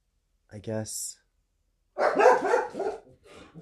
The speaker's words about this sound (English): I guess the dogs are in agreement that it's time to take a break.